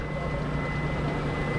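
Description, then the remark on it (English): The motor of a Colville boat carrying tribal and federal biologists on an EPA fish study drones steadily on Lake Roosevelt, a 150-mile lake, on a chilly night: a continuous low rumble with a faint tonal hum on top, holding an even loudness throughout without any voices. “On a chilly night, a Colville boat with tribal and federal biologists aboard motors to one corner of the 150-mile lake.”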